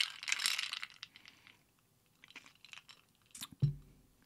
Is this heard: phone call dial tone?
no